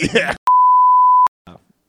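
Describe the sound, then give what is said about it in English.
A loud, steady single-pitch censor bleep lasts just under a second, cutting in right after a voice speaks and followed by a brief murmur of talk. “Beep that out.”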